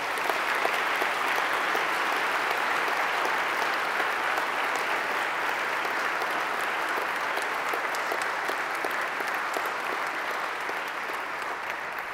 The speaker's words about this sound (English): And I would like, please, that we applaud his divine mercy at this very moment.